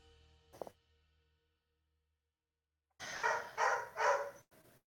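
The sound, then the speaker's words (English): A dog gives one short yap, then after a pause lets out three loud barks in quick succession, followed by a brief softer one. No one speaks. “This dog would stop barking!”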